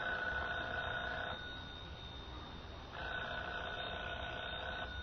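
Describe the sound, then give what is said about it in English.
A telephone rings in two long bursts separated by a pause of about a second and a half, a steady, buzzy bell tone with no voices. “Should I answer it? Answer it. Hold the receiver up, that's right.”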